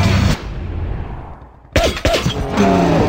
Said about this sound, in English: And there are the gunshots. So this has got Henry Cavill in it, who is also the Man of Steel, Superman, and directed by Guy Ritchie.